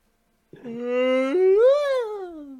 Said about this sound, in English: I yawned. Speaking of yawning, actually, that's got nothing to do with the next segment.